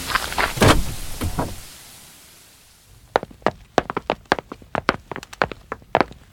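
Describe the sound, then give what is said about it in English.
A locked door is unlocked with a bobby pin and swung open: a few scraping clunks, a quiet pause, then a quick, irregular run of sharp clicks and taps. No one speaks. “It's lovely, but how do you open the door? Your bobby pin.”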